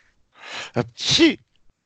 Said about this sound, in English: Bless you. I mean, here, like, is that a sneeze? No.